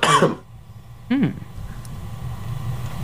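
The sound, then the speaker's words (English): Two coughs: a harsh, breathy burst right away, then a shorter, rougher cough about a second later, followed by a steady low rumble in the background. “Did you know that we apparently can't tell the difference between a sick cough and a healthy cough?”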